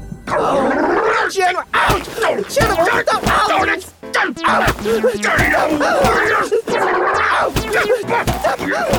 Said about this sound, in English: General Abby's vicious voice and Corporal Snobby's screaming kept echoing up in the sky.